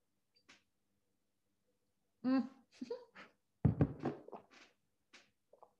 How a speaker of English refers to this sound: Let me just have a little cheeky sip of water.